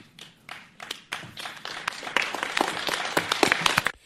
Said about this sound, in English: I just want to play the applause at the end.